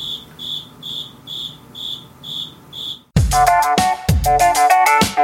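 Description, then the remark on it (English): A cricket chirps in a steady, evenly spaced rhythm, seven short trills at moderate loudness, before a sudden loud burst of dense tonal sound takes over and drowns it out. “Yeah, it's the cricket, man.”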